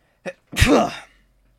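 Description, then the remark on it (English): A single loud sneeze: a short sharp intake followed by an explosive burst that trails off quickly, with no one talking. “Bless you.”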